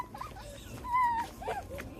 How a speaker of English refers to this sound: Well, I don't know if you can tell by the change in the audio, but... the movie started off with a bang, and so much so that as soon as we got past the opening logo of Marvel Studios, the dog started barking and had to go outside for a walk.